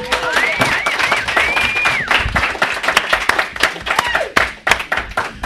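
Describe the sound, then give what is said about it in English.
An audience at a gaming convention breaks into steady, dense applause for the person who runs the role-playing games, lasting the whole stretch, many hands clapping at once, with a rising whistle ringing out over the clapping early on. “Look, everybody, a round of applause for the guy that makes this whole RPG part happen.”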